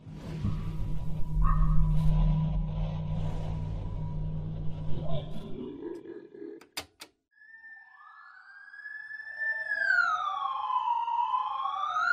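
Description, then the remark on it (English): An alarm clock goes off with a loud, wailing electronic tone that sweeps up and down like a siren, following a low rumbling hum and a couple of sharp clicks. “My alarm clock is going off again.”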